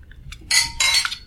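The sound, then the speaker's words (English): Glasses clink together in a toast during a beer tasting: a couple of light taps, then two bright, ringing clinks, with no one speaking. “Cheers.”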